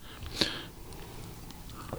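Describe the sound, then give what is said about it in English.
A single quick sip of Founders Breakfast Stout, a heavy 8.3% ABV beer, one brief wet slurp standing out over quiet background noise, followed by soft mouth sounds as the drink is swallowed. “A quick sip in.”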